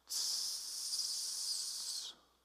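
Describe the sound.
A voice imitates the hiss of a deflating car tire: one steady, sharp, high-pitched hiss lasting about two seconds, alone and fairly loud, stopping abruptly.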